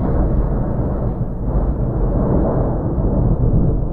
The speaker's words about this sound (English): And on the morning of the third day, thunder boomed.